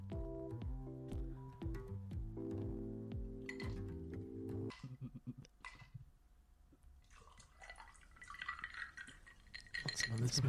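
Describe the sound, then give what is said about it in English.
A screwdriver cocktail is poured into a glass, a gurgling, splashy stream with faint glassy clinks, following a stretch of tonal, voice-like sound at the start. “I'm pouring another one.”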